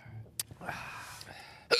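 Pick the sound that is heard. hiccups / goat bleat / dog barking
hiccups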